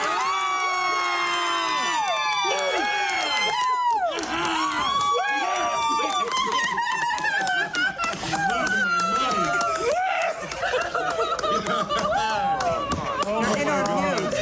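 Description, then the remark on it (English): A loud burst of group cheering as a player is told by phone that he has been voted into the Hall of Fame, many excited voices shouting and whooping over one another in a continuous, sustained roar of celebration. “And just to clarify what was said right before the cheer, it was, I'm calling to inform you that this year you did not fall short.”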